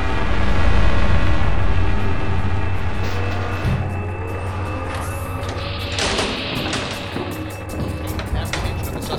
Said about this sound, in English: That's the tactical field's mobile command post. Look at that monster! I've never seen a big beast of a machine like that hover off the ground!